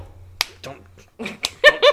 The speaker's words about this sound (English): That was me slapping my own arm.